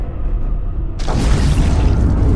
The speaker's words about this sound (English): And then you hear a loud explosion at the top of the tower. And just looking up, you see it's burning up there. 800 feet up, it's far away, but there's fire.